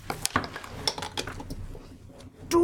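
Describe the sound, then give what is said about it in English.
Dice tumbling across a table, rolled for a strength save: a quick, irregular run of hard clicks and clatters that thin out, ending with a louder rattle as they settle again. No one speaks. “Yes, and I'm going to use a different dice because this one's angry at me.”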